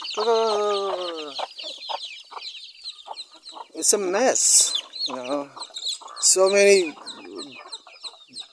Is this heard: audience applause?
no